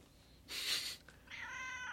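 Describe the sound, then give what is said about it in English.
A cat meows, first a breathy, raspy cry, then a brief pause and a longer, tonal meow that holds steady to the end. No one speaks. “Kitty, quiet.”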